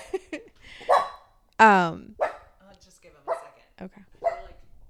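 A dog barks repeatedly at a roommate coming home, in short, irregular bursts, about six sharp barks over a few seconds, loud, with one especially strong, ringing bark near the middle.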